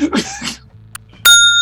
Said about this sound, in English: It's a bell. Dinner's ready.